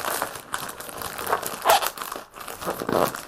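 Crinkling and crackling of a loosely packed shipment holding cards in their original cases being opened, a steady run of irregular rustles and sharp crisp bursts with no voices.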